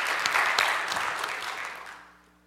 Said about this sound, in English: Let's give the Italians a round of applause. Thank you, Italians.